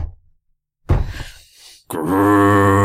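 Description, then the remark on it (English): A loud, deep growl: first a short rough, rumbling burst, then after a brief pause a sustained, steady low-pitched growl that holds strongly to the end, with no speech. “And with that, you hear this loud growl that comes out.”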